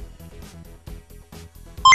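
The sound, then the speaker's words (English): Computer beeping sound effect of a calculating computer scoring a game: a rapid run of soft, low electronic blips pulsing in a steady rhythm, then one loud, piercing high beep at the very end. No one speaks. “Calculating computer activated. Computers. Beeps. Boops.”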